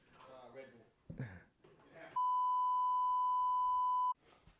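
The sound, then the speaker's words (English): A single loud, steady electronic phone tone rings out for about two seconds as a phone call is being made, with people talking just before and after it. “I'm gonna make a phone call right now, mid pod.”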